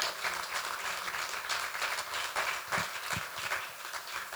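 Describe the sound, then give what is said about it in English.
A church audience claps their hands together in steady, dense applause that stays fairly loud throughout, with a few sharper individual claps standing out from the crowd's wash of noise. “And I was like, come on, let's clap our hands for that.”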